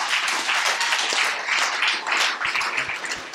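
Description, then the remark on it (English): An audience breaks into a round of applause for the volunteer firemen, a dense, steady wash of many hands clapping at once, holding at a fairly loud level throughout with no voices. “To me, the firemen deserve a round of applause, because they're the heroes.”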